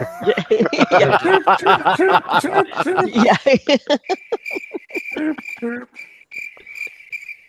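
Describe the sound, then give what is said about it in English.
Chuckling laughter gives way to steady, high-pitched cricket chirping in quick repeated pulses, clear and fairly loud, carrying on alone for the last few seconds. “Crickets.”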